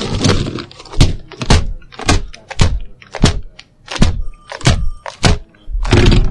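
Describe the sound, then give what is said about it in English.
A keyboard is slammed against a desktop again and again, about a dozen loud, hard plastic whacks with rattling clatter, coming in an uneven rapid rhythm with no voices. “My morning ritual of smashing my keyboard on the desktop.”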